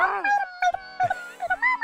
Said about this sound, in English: He's very high strung when it regarding squirrels and birds and stuff. Oh, yeah. And he doesn't bark like a normal dog. He'll it's more like scream at them. He screams.